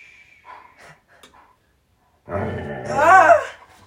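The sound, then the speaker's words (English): A dog lets out a drawn-out, wavering moan, loud, rising in pitch before trailing off. Faint, scattered noises come before it, then a brief silence. “Why are you moaning? That was a moan.”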